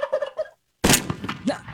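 A turkey gobbles in a quick, warbling series of a few bursts, then a pause, then a loud, harsh noisy blast of sound with more rough calling after it.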